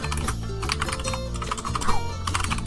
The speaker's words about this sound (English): Yes, more ASMR keyboard sounds. It's your favourite. Everyone loves it.